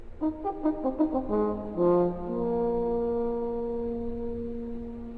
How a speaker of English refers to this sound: It's the horn, not surprisingly, which gives us the sound of the bugle.